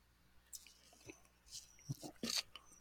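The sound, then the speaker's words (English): Someone swallows a sip of beer, with a few soft, wet mouth clicks and gulping sounds in short bursts over a quiet background, with no talking. “Sorry, folks, kind of swallowing my beer on that one.”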